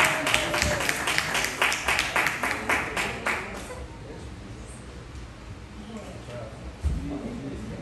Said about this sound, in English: But if you can give some round of applause